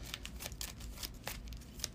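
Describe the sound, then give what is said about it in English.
A deck of playing cards being shuffled, a series of quick crisp riffling bursts in an irregular rhythm, fairly quiet, with no one talking. “So put that there, and then I gotta shuffle the rest back.”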